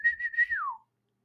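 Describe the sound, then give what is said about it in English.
A person imitates the loud whistle of a fan heard in the background at Pirates games: a sustained high tone with a few pulses, then a gliding drop in pitch, heard alone. “The guy who always goes, who whistles in the background goes.”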